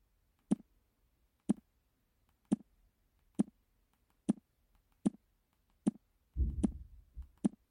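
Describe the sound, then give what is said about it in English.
Repeated double taps on the Smart View item on a smartphone touchscreen: about eight sharp clicks at a steady pace, each a little under a second apart, ending in a brief muffled rustle. No one speaks. “Once Smart View is in focus, you're just going to double tap this 10 times.”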